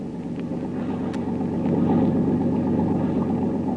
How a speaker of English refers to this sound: Another motorboat maybe follow us. I hear it.